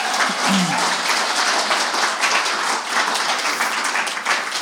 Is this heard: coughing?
no